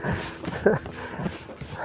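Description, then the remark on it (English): A dog barks quite a way off just after sunrise, a couple of faint, muffled barks rising briefly over a steady background hiss with no one talking. “That dog is still barking.”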